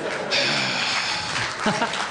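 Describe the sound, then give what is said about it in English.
A small group of about six people at a table claps briefly, a dense patter of hands, with a voice and some murmuring mixed in near the end. “Each table I walk away from, there's a six-person applause.”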